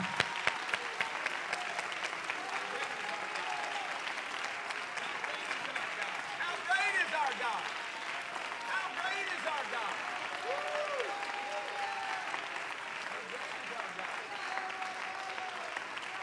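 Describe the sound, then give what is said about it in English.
An audience claps unto the Lord in praise, steadily and loudly for several seconds, a dense, sustained wash of many hands, with scattered voices calling out underneath the applause. “If you don't mind, to set your Bibles down behind you on the seat, and we're going to clap unto the Lord like it's the last time you'll ever get to give him praise.”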